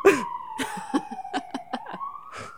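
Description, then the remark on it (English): A police car siren wails in a slow, steady tone that dips and then rises again as the police car speeds down a street in Toronto, with sharp bursts of street noise breaking in over it. “When I was waiting outside, there was a police car that sped down the street.”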